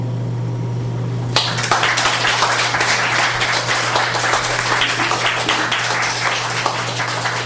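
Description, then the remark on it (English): After a moment of low hum, an audience bursts into applause following a reading, a dense, steady wash of many hands clapping that continues strongly to the end. “give him another hand.”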